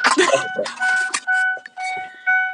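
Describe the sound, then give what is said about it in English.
A car's electronic alert chime sounds in a steady run of repeated, sustained electronic tones, fairly loud, following a brief burst of talking at the start. “Now your car talking.”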